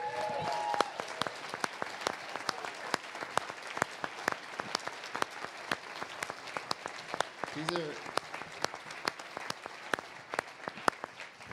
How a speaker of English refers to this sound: Before I do that, would you guys be willing to give our panel a round of applause?